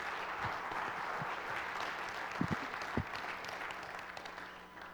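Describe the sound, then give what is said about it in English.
An audience gives a man another round of applause, a dense wash of steady clapping with a few sharper, louder claps standing out partway through, sustained for several seconds without talk. “So can we give him another round of applause?”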